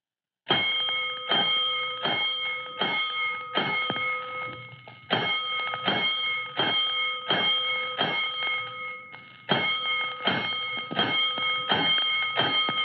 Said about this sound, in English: Five bells. Stand by all stations. Attention, all districts. A five-alarm fire. Five bells.